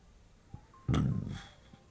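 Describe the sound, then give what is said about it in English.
A single short, throaty burp, fairly loud, lasting about half a second against a quiet background with no talking. “Sorry for the burp.”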